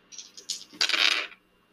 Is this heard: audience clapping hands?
no